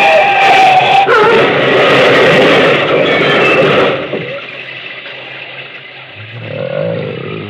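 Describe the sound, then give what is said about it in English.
A car crash in which a man goes through a glass window: a loud, chaotic burst of crashing noise and harsh screams fills the first four seconds, then fades to a low engine-like rumble with a faint rising wail near the end. “They bubbled through his torn throat as he lay in the glass-smashed window through which he'd crashed.”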